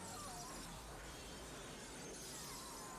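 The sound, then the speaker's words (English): Fake breakaway glass shatters in a film stunt with stunt people, a sustained, crashing cascade of bright tinkling shards spilling continuously over a dense, noisy roar for a few seconds, loud with no voices. “This is stunt people and a real glass. I mean, fake glass.”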